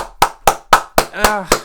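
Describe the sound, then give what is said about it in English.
Six sharp hand claps in a quick, steady rhythm, roughly four per second, with a brief voiced sound slipping in between the last two, clapping at news that Manchester United may trial safe standing at Old Trafford. “I probably shouldn't have clapped as more enthusiastically than I did for helping NHS workers.”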